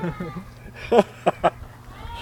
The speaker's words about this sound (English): So it looks as though they've hired the goat to come take care of it, and he's just standing on that picnic table all upset. Ugh. Human-like cries. Hey, John. Can you hear the goat? Well, that's what that is.